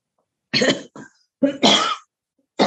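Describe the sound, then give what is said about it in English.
A person coughs several times in loud bursts with short pauses between, including a harsh throat-clearing hack, with no talking. “Take a drink, clear your throat.”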